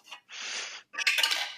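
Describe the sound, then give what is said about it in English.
Dice rolled through a dice tower to pick one of eight questions in a game called Dicey Questions: a short rattling rush, a brief pause, then a louder burst of sharp plastic clicks and knocks tumbling together, with no voices. “So I have a dice tower behind me and I have eight random questions.”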